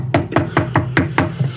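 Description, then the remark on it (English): A series of six sharp knocks on a door in a steady, even rhythm, moderately loud, with no voices. “All of a sudden, there's a knock at the door.”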